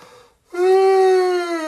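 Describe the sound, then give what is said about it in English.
A single loud, drawn-out yawn, voiced, holding a steady tone that sags slightly in pitch for over a second after a brief quiet intake. “I was about to say yawning is not dead air. I made noise.”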